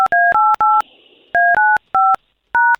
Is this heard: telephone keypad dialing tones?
yes